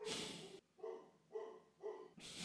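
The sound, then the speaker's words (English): A dog named Izzy barks three times in a steady, evenly spaced rhythm, clear, framed by bursts of noisy rustling before and after. “Izzy says yes. Woof, woof, woof.”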